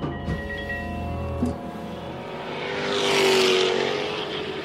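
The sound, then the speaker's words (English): Race cars circle the track at the Monticello Motor Club in upstate New York, engines droning steadily before one roars past, its whine swelling loudly and then easing away. No one speaks. “We leave you with our visit to the Monticello Motor Club in upstate New York, where driving isn't just something you do to get from here to there.”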